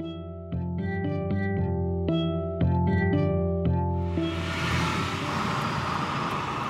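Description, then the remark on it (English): Inside a car driving around on errands: a steady low road rumble with shifting tonal notes, then a loud rushing wash of wind and road noise swells up and takes over. No one speaks. “I'm riding around in the car”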